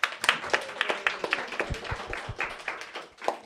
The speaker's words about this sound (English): Please have a round of applause for the cave military.